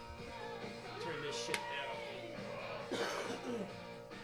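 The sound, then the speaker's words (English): Several rough morning coughs come in quick succession, with a throaty clearing in between, moderately loud against a quiet background. “Coughing so much over there.”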